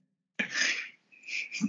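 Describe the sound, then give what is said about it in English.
A sharp, breathy sneeze bursts out suddenly after a moment of silence, followed by a second hissy, sputtering burst as it trails off. No one speaks. “God bless you.”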